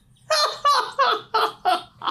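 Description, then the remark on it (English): A person squawks in an imitation of a chicken or bird, five loud, clucking bursts in a steady rhythm, with nothing else heard. “I am a bird.”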